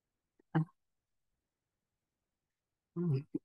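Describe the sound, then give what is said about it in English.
Two brief throat-clearing attempts by a person whose allergies are acting up, a short rough burst followed by a long pause, then a longer grunting clear ending in a small click. “Seems like I can't clear my throat.”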